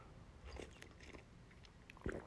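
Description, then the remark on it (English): Faint mouth sounds of someone sipping coffee, small wet clicks followed by a short swallow near the end, with no talking. “I'm going to take a sip of my coffee right now.”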